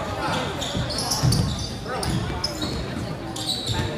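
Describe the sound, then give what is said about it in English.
A basketball is dribbled on a court during a game between Pekin and Sigourney, its bounces landing as a loose series of dull thumps over a steady wash of gym noise and faint background voices. “Dribbling.”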